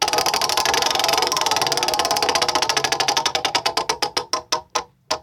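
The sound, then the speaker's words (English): A prize wheel spins, its pointer ticking so rapidly at first that the clicks blur into a rattling whir, then gradually slowing into separate, sharp clacks that spread out until the wheel stops. “I will be getting on with my story. Very well. After this wheel spin.”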